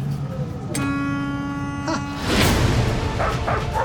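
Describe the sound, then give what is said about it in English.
A person imitates a dog, letting out a drawn-out, tonal yowl followed by rougher, noisier barking sounds, fairly loud over a steady rumbling background. “I learned to talk dog.”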